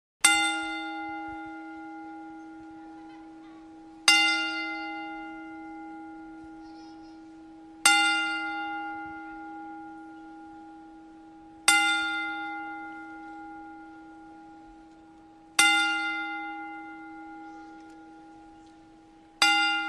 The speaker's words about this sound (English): Legendary Bobby the Brain Heenan passed away, and out of respect, we are going to have a 10-bell salute.